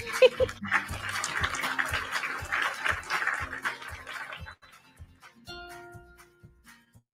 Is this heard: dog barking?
yes